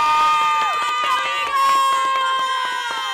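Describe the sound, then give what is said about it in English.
A Cloverdale High School crowd at Cheer Factor cheers loudly and steadily for about three seconds, with high shouts and whoops rising over the roar and scattered claps punctuating it. “Make some noise. Make some noise!”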